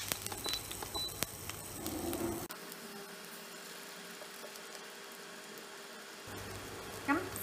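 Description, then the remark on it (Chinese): Egg white sizzles steadily as it fries in a little olive oil in a pan alongside a heart-shaped sausage, a continuous crackle with a faint background hum at the start and end. “跟住就咁样慢慢煎熟啦。”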